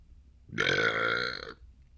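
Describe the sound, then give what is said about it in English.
A single loud, drawn-out burp lasting about a second, with a rough, buzzy, voiced tone that starts abruptly and cuts off, surrounded by quiet. “Excuse me and the entire world.”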